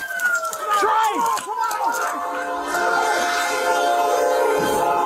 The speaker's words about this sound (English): scrambling to pull him out the broken front window as they hear the train horn blaring in the distance.